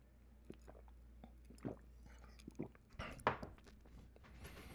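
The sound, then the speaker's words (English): Someone takes a quiet sip of a drink: soft wet mouth clicks, a slurp and a swallow over a few seconds, with no one talking. “Hold on, let me take a sip of my drink.”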